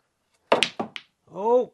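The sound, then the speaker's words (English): A quick run of three or four sharp knocks as snooker balls are whacked and clack together, nearly potting the pink, fairly loud, followed by a short voiced exclamation. “Just whacking it. Nearly pots the pink.”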